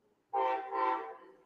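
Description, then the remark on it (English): A train horn blares suddenly and loudly, sounding one long, rich chord that swells twice before starting to fade, with no voices over it. “I think the train's excited about the Hosmer potential to be in the deal.”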